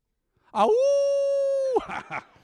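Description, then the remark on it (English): A man's voice imitates a howl at the moon, one long steady sustained note held for over a second, loud, then breaking off into a few rough voiced syllables. “I howled at the moon, man.”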